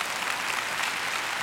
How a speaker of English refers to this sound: Can we applaud our God for his power?